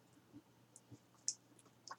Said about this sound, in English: Hold on, let me take a sip of water here.